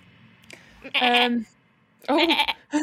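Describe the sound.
Someone imitates a goat with two loud, quavering bleats about a second apart, followed by a short clipped start of a third.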